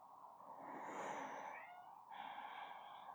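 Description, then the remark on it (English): A single long, drawn-out yawn, a breathy inhale that turns into a faintly voiced, whiny exhale, quiet, lasting about three seconds with no talking. “No, I'm not gonna stop yawning.”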